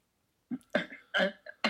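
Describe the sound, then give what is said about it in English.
A burst of coughing from two people: around five short, harsh coughs in quick uneven succession, fairly loud, with no talking around them. “we're both coughing.”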